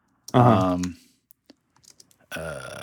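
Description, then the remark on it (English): A few light, irregular keyboard clicks of brief typing on a computer fall in a gap between stretches of a voice speaking, soft. “So I'm typing.”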